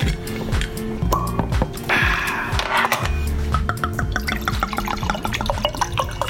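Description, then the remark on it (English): Wine is poured into glasses, with a steady gurgling splash and quick drips and clinks scattered throughout, no one speaking. “Just open some wine, then we'll start this podcast, yeah?”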